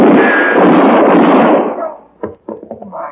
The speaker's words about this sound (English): Shoot the winner in the back. Dirty pig, you shoot a hole in my hand. You're lucky it wasn't your head.